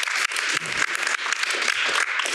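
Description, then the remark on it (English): A crowd claps steadily in a dense, continuous burst of applause for a journalist being introduced as a guest, with no voices breaking through. The wash of claps holds a fairly even loudness for a couple of seconds. “Let's give Moya a round of applause.”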